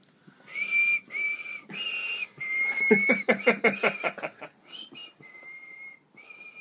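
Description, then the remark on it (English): A person whistles the slow, stately anthem God Save the Queen alone, with sustained pure notes in phrases, a brief trilling burst in the middle, moderately loud. “I think you whistle God Save the Queen for a bit.”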